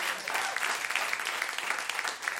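An audience claps steadily, many hands forming a dense, continuous patter that holds at an even level throughout, without any voices rising above it.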